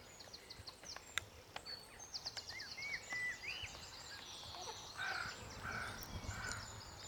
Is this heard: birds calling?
yes